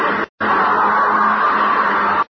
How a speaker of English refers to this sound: It was a week later that I was awakened suddenly by the fierce yelping of the great watchdog on the campus, followed by a sound from a wholly different throat, a scream.